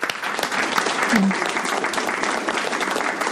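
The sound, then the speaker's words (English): Steady applause from a meeting audience welcoming people attending for the very first time, a dense continuous patter of many hands clapping at even loudness throughout, with no voices standing out. “Let's give them a welcome applause.”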